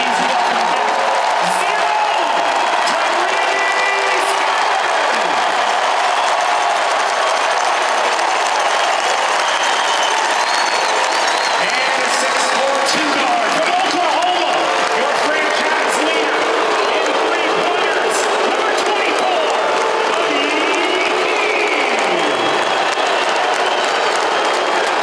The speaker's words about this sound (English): You hear the raucous cheers, the standing ovation that Tyrese Haliburton received. No chance he was going to receive anything different.